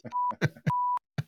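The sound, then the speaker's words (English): Two steady, high-pitched censor bleeps, each lasting about a quarter second, cut between short, loud, clipped bursts of a voice talking. “You should get a reverse beep where it only beeps out normal words and just puts all the swear words in.”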